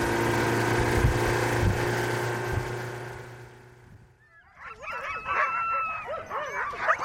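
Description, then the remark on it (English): A steady motor drone fills the first half, then fades as teams of sled huskies, tethered to squat wooden doghouses in the midday sun on the island of Shishmaref, take over, barking, yipping and howling restlessly with wavering, overlapping cries. “Back on the island, teams of huskies bark restlessly in the midday sun, tethered to squat wooden doghouses.”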